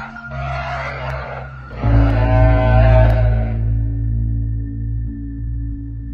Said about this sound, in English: And from the sounds, we heard Rudy in the back squealing away, which, you know, is a little bit unsettling because you don't really see or hear pigs every day.